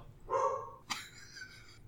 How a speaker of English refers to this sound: Wait, your dog's telling you the title. Yeah, he is.